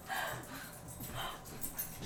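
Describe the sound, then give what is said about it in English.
A pet dog named Stripe barks in a few short, muffled bursts spaced about a second apart, fairly faint and breathy, with no one talking over them. “My dog's barking.”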